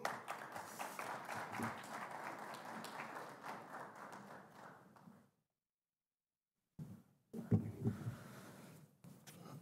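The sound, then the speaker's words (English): An audience in Lansing applauds new at-large City Council member Jeff Brown as he is introduced, in a dense, steady patter of many hands for about five seconds, falls silent briefly, then bursts into another louder round of clapping. “a round of applause for his courageous tenacity.”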